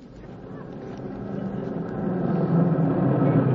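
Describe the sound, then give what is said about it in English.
A milk truck's engine rumbles steadily, growing gradually louder as it pulls into a driveway, a low motor drone with no voices over it. “Hey, the milkman just pulled in the driveway.”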